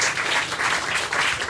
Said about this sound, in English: Another round of applause, please.